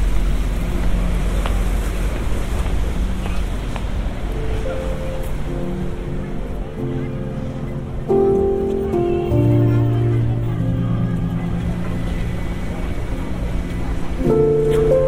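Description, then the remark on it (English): River Thames water laps and sloshes against the water's edge, swelling and receding in an uneven rhythm over a constant low rumble, with faint tonal hums drifting in the background; a small child's football sways back and forth on the water. “There's a small child's football on the water, and the swaying is bringing it forwards and back towards me and away.”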